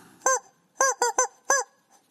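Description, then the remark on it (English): A chicken squawks five times, loud harsh calls in an uneven burst, one single cry and then a quick run of three before a final squawk, with no voices around. “Let's sign out with a chicken, shall we?”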